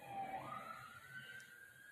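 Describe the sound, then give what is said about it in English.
An emergency siren wails steadily, its pitch sliding upward over a low rumble of background noise, with nobody talking. “Y'all hear that? Y'all hear them sirens?”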